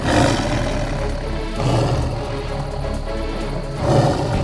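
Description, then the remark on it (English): A tiger growls loudly and continuously, a deep rumbling snarl that swells into heavier roaring bursts at the start, around the middle, and again near the end. “The growling noise grew louder, and soon the men were forced to move more quickly.”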